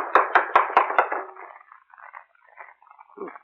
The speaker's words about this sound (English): rap too hard. You'll knock the door off its hinges.